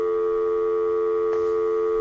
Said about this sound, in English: Oh, that's just the dial tone.